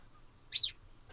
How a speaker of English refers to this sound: That wasn't that a growl, that was me moving my laptop.